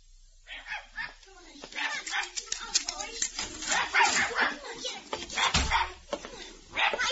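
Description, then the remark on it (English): A dog barks and whimpers in short, repeated bursts, its yelps and whines coming in an uneven rhythm over a low background rumble. “I never liked dogs much.”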